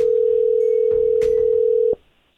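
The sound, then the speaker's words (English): A phone call's ringing tone from a call placed again from a restricted number: one steady, loud electronic burr holds for about two seconds, then cuts off into near silence, with faint clicks and rustles underneath and no talking. “Let me call him one more again,”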